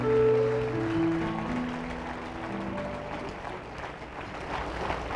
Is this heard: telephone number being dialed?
no